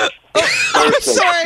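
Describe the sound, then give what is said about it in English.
A person loudly imitates hiccups with their voice, making a few sharp, strained vocal gulps in quick succession after a brief pause. “They're very painful hiccups.”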